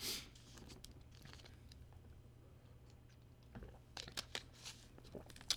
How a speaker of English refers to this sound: I'm going to drink some more water.